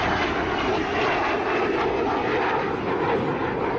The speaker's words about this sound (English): Obviously, the Goblin engine, off the top of my head, apart from Venoms, I can't think of any other aircraft on the display circuit in the UK with centrifugal engines. So a very distinctive whistling noise when it flies.